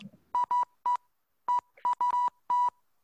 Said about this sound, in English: It's probably just a bunch of random beeps, though. I doubt it's like actually like, because you'd have to, that'd have to be a lot of dots and fucking dashes.